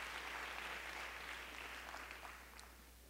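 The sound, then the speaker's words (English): An audience claps steadily together in praise to the Lord, a dense wash of many hands, gradually tapering off toward the end with no voices over it. “Clap your hands one more time to the Lord and give him praise.”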